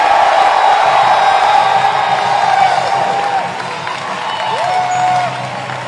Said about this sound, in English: And if you're happy about what I'm saying, I want you to clap your hands, lift up your voice, and give the Lord a shout.